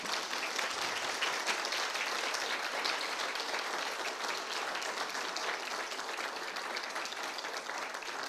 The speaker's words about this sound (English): Now you may show your applause